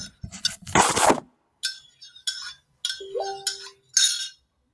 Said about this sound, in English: All right. My tea is stirred.